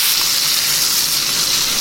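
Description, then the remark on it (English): A burger, just flipped to crust the other side, sizzles steadily in a frying pan, a loud, continuous crackling hiss of hot fat that stays even for the whole moment with no voices over it. “Burger flip. Time to put a bit more crust on the other side.”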